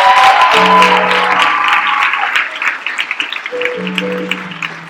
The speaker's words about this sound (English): Only in Pentecost that you get hand claps for stuff like that.